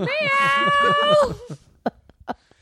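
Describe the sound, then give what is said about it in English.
A person imitates a cat with one long, drawn-out meow that rises and falls in pitch, followed by a few short, soft vocal bursts. “Wait, what's that? Meow. Meow.”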